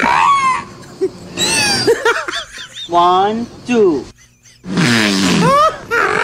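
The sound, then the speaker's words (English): Whale sounds: a series of loud, sweeping moans and squeals, with rough, fart-like blats and gagging gurgles between them. A voice briefly speaks among the calls. “It sounds like the whale farts and then gags because of his own fart.”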